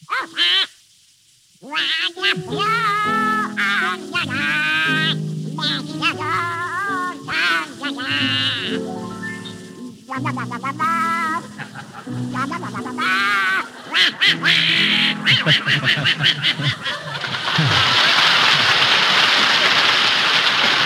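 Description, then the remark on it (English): Donald Duck's squawky cartoon voice sings a wavering melody on radio in quacking, raspy tones, held notes and quick quacks alternating, ending in a burst of noisy hiss like applause or rain. “Donald Duck, you've denied being the worst singer in the annals of radio. All right, prove it. Sing, and it better be good.”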